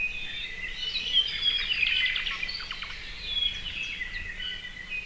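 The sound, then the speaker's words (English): A Hawaiian thrush, a forest bird, sings a continuous, warbling song of quick whistled notes and rapid trills, steady, with no voices over it. “All the Hawaiian Islands used to have their own species of thrush, but unfortunately, Kauaʻi is the only other one where they've not yet gone extinct.”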